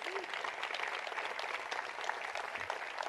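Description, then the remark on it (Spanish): An audience applauds for soldiers, a dense, sustained wash of many hands clapping at once, fairly loud and continuous throughout with no talking over it. “Un aplauso para nuestros soldados, por favor, familia.”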